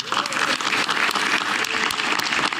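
applause and cheering

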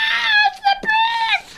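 human scream

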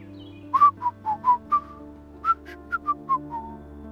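person whistling a tune

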